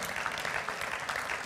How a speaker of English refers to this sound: Somebody clap their hands right now.